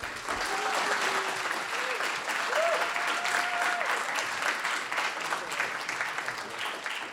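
A crowd claps steadily in a dense, sustained burst of applause that holds loud for several seconds, with a few faint whistles or cheers riding above it, and no one speaking.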